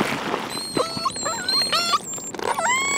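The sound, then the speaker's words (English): Whale calls: a string of high, squealing whistles that sweep up and down in pitch, several overlapping, over a steady hissing background noise. No one speaks. “That's a whale, Laura?”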